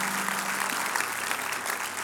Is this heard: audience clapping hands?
yes